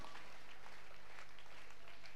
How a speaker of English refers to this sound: Let's clap.